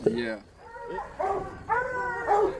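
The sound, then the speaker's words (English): Several hounds bark and bay at dog kennels in a rapid series of loud, overlapping calls, some drawn out into short howls, with no talking. “We're now out by the dog kennels.”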